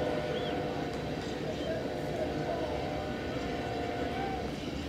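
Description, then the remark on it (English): A freight train with many tanker cars rolls by steadily during a baseball game after the rain has stopped, its deep continuous rumble and faint metallic whine holding at an even level throughout, with a murmur of crowd or voices underneath. “The train is moving.”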